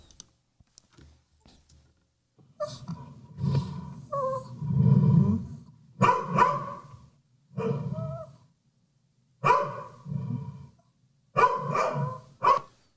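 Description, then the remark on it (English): Several dogs bark in repeated bursts, some sharp and some drawn out, with short pauses between volleys; the barking is loud, and no one speaks. “So those are my dogs.”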